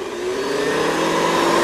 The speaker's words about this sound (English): It's actually the vacuum cleaner again, but you get the idea.